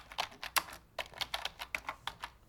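Rapid typing on a computer keyboard, entering a search into a website's search bar, a quick irregular run of clicky keystrokes with brief pauses between bursts, no voices present.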